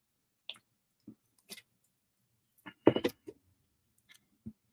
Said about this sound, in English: And I'm going to take a sip of my liquid death and then dispense with the pleasantries and get to it.